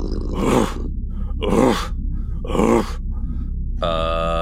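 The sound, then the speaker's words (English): A voice imitates a wheezing, rattling door that lightly opens and closes: three loud, breathy rasping bursts at a steady pace, then a short buzzing, tonal groan to finish. No words are spoken. “With that, it starts to rattle, and the door starts to lightly open and close. It almost sounds like it's wheezing, like it...”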